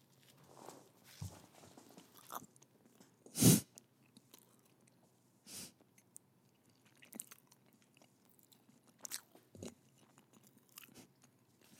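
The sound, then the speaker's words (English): Close-up chewing of pizza right against the microphone: wet, crunchy bites and mouth noises in irregular bursts, with one loud crunch early on, and no talking. “All right, I'm going to take a bite out of this pizza and chew right into the microphone.”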